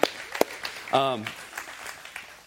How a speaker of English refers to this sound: Yeah, you guys can clap for him. It's good.